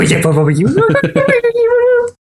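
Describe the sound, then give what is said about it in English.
A person imitates a cat, talking into a microphone with a drawn-out, wavering meow-like vocalization, loud, sliding upward in pitch then holding a long whiny tone before stopping abruptly. “You try to cat talk through the microphone.”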